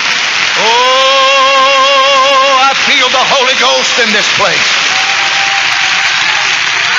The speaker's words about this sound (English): If you find anything about this to shout about, you better do it right then. Let's clap our hands and love Jesus.